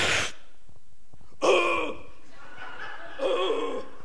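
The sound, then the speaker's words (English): A person imitates the harsh, violent coughing fit they had after taking a first hit, a few strained, raspy bursts separated by short gasping pauses, fairly loud. “It was that kind of like paralytic, terrible coughing”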